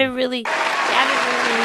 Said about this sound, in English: Good for her. Yeah. Round of applause.